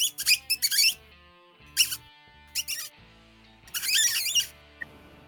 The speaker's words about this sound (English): You notice Kaya goes over there and puts her nose to the glass and then a bunch of rats scatter except for one, the one standing right in front of Kaya. And it's just squeaking at her.